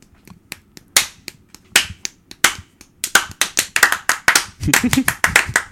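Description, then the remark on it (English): Uneven, scattered hand clapping that starts sparse and builds into faster, overlapping claps from a few people, with sharp bright slaps and some murmuring voices underneath. “I think right around season 5, we'll have learned to clap.”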